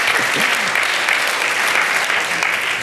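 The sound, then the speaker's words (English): An audience breaks into steady, dense applause, many hands clapping together in a continuous wash of sound that holds at an even, fairly loud level for about three seconds. “A round of applause for Scruffy, everyone.”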